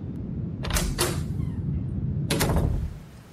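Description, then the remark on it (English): A man knocks on his son's locked bedroom door: a quick cluster of sharp raps, a short pause, then another burst of knocks, over a steady low rumbling background with no voices. “But the yellow man ignores his request and goes to check on his son's door. Only, he doesn't answer. The door is currently locked.”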